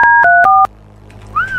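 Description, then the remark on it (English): Three quick telephone keypad tones beep in rapid succession as a phone number is dialed to call a listener, loud, each a steady dual-pitched note, followed by a brief quieter chirp against a low background hum. “Answer your phone if you contributed in the last 1 hour. Ooh. Speedy today.”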